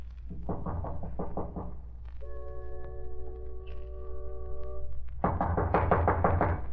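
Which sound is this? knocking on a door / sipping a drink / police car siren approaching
knocking on a door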